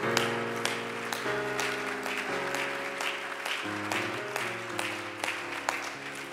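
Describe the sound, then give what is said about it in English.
A church audience claps hands in praise in a steady rhythm while singing, along with loud, sustained keyboard chords, the claps landing as sharp regular beats over the music. “Let's give the Lord a hand clap of praise as we're singing.”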